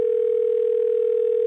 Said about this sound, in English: And then the phone rang.